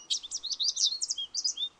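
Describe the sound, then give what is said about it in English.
Rapid, bright bird chirps and trills repeat in quick bursts, a lively birdsong chorus with no talking underneath. “By the way, these aren't real Long Island bird sounds, but you get the idea.”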